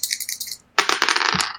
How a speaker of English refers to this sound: Jeez, I rolled a five. I'm getting rid of these dice, too.